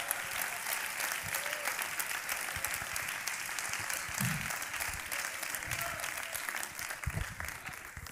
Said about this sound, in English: Amen is not just a filler word. Rather, it's a response of faith to the truth of God's word. Clap your hands to him right now.